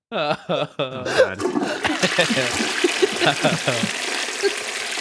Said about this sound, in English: Another flush.